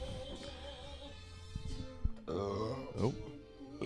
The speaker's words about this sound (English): That wasn't me. I didn't burp. If you heard that, that wasn't me.